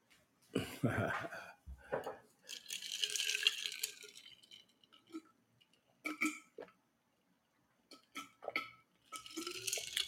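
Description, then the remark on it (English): A person drinking water: gulps mixed with wet lip smacks and mouth clicks, coming in uneven bursts with short quiet pauses between swallows. “I'm doing the water thing. Oh, that's good water. Y'all excuse all the smacking and whatnot, but I gotta do it.”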